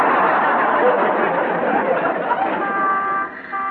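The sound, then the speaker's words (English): A loud, steady rush of street traffic noise fills the scene, and near the end a speeding car sounds a sustained horn honk as the roar begins to fade. “Mamma mia, look at that car speed. He's almost hit me.”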